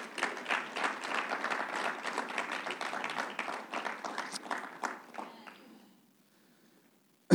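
A crowd breaks into sustained applause as an intermission hand clap during a sermon, many hands clapping densely for about five seconds before thinning out and fading into near silence.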